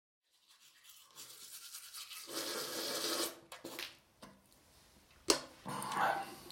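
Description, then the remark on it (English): Steady scrubbing of a gentle-bristled toothbrush against teeth, a wet bristly rasp that rises and falls in short strokes for several seconds, with a couple of brief sharper knocks near the end. “It's a very attractive looking toothbrush. And it is quite gentle.”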